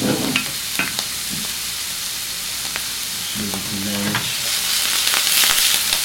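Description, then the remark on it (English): Steady, crackling sizzle of potatoes, carrots and beets coated in oil and frying over high heat, a bright hiss with scattered pops and a few clinks and scrapes of stirring, with no talking. “So what I like to do first is get my vegetables coated with oil and then just kind of let it sit there.”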